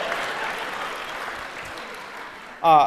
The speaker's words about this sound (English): apparently the audience tried to show their disapproval with a slow clap. Has that sarcastic clap made it over here, or is that something you guys are doing?